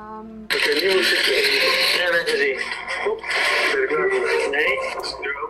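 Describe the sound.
A short steady tone gives way to a loud burst of crackling radio static interference coming from a man as two people walk down a street, harsh and continuous for several seconds, with warbling, garbled voice-like tones buried in the noise.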